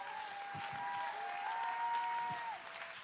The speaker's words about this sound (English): Just do it! My God, somebody clap your hands. My God, somebody lift your voice. My God, just do it!